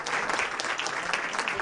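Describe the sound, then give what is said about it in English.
Steady applause from a group of students giving themselves a hand at the end of a class hour recorded on Good Friday, dense overlapping claps filling the whole moment at an even, lively pace with no voices standing out. “And yeah, let's hear that applause one more time. Give yourself a hand.”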